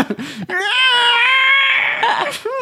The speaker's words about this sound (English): Fuck, I do like listening to cats get fucked. Not going to lie. It's so intense. Like, damn.